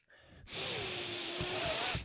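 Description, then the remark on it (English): One long, breathy sniff, a steady airy rush lasting about a second and a half as someone deeply inhales the aroma from a glass of whiskey that had held an ice cube. Faint low bumps come near the end. “Take a sip. You can give it a big old snifferooski.”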